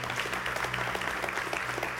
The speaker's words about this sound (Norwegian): Vi synes vi skal ha en liten applaus allerede der for å teste publikum I dag. Bra.